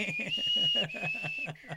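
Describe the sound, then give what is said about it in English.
Someone whistles a short, clear tune of a few sustained notes, fairly loud, with a steady rhythmic thumping pulse underneath. “Like, what's the whistle?”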